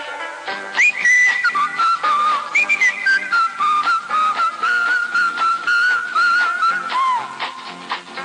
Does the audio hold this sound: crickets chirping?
no